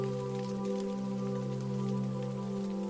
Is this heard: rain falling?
yes